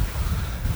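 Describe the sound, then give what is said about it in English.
Choppy sea waves from a large southwest swell and a small west swell wash against a sailing boat in a steady, rumbling churn, mixed with wind from the west buffeting the microphone; fairly loud, with no distinct individual splashes. “So we have a large swell from southwest, west-southwest, and a small one from west. So the sea is a bit choppy.”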